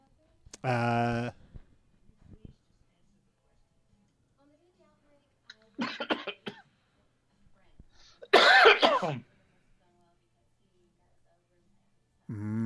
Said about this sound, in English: Like, that's why I started the laugh and then I started to cough a little bit.